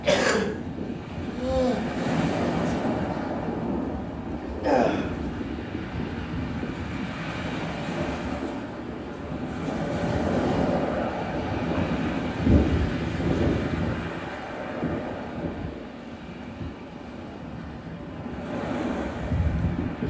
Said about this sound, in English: And the other day, just, I knew I was giving this talk, you know, just the sound of the sea.